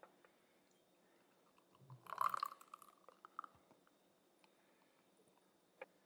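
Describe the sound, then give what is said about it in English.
Beer is poured into a glass in a short, quiet splash of liquid with a faint fizzing trickle, followed by near silence and a soft click. “Now, they don't look too different in their pours.”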